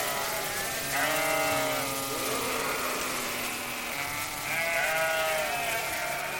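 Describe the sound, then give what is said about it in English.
Sheep bleat twice, a wavering cry near the start and another a few seconds later, both clear over a steady outdoor background hum. “He knows the sheep, and the sheep know him.”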